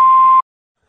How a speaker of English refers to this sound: Leave a message after the beep because this has places to go.